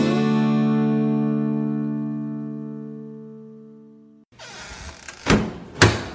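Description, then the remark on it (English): A sustained ringing chord slowly fades out, then a wooden shed door scrapes as it's pulled shut and lands with two solid thunks. No one speaks. “We've pulled the door closed on this episode of The Shed Wireless”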